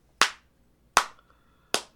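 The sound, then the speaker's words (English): Three slow, evenly spaced hand claps, each crisp and sharp with a short ringing tail, sounding alone in silence like a sparse, hesitant round of applause. “But like a weird kind of light applause.”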